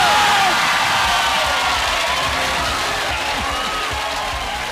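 A studio audience cheers loudly and steadily, a dense wash of shouts, whoops and excited voices that stays at a constant high level for several seconds, with some high-pitched yells on top.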